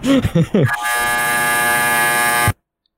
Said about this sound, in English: The dryer returns.